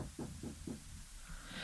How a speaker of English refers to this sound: And as soon as he says that, there's a knock at your door.